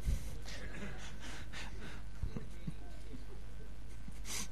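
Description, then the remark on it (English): A voice imitates snoring with a few rough, breathy snorts and gasps in uneven bursts, fairly loud, with no words spoken. “And then if you've got me and the two dogs, three of us snoring, it's a symphony.”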